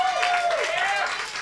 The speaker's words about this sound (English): Everyone, a hand of applause for Ellen. She worked on this movie that we're all here to celebrate.